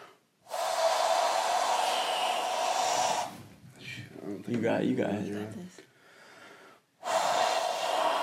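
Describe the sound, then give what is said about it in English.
A person imitates a moving train with their mouth: long, loud, breathy whooshing bursts, broken by a stretch of voiced, laugh-like vocal sound before a final whoosh. “I used to be able to make a like train muscle sound, but I can't anymore.”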